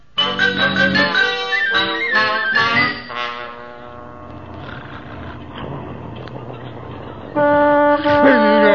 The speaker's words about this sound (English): What's that? Oh, it's just a truck passing by. Sounds like it's on the front lawn.